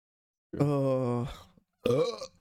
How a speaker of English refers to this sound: Burps are better this time. Yeah, burps better.